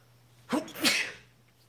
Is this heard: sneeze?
yes